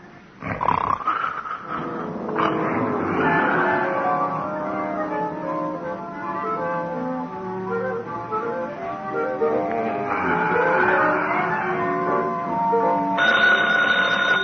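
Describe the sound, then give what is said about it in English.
A telephone bell rings loudly and steadily for about fourteen seconds, a dense, harsh metallic jangle that keeps going without pause and with no voices over it. “Oh, phone”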